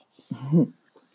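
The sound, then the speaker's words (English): A single short, rough throat clearing by a person about to sing a song, fairly loud, lasting under half a second, with quiet breathing before and after. “I just need to clear my throat.”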